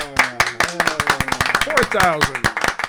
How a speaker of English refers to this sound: We need a lot of applause here. It's applause time.